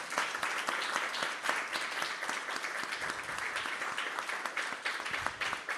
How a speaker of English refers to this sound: Yeah, and you can clap too.